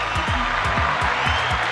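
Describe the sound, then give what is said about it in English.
A crowd applauds steadily, a dense wash of clapping with low thumps recurring every few tenths of a second, fairly loud, with no voices standing out. “Look at the crowd. They love you.”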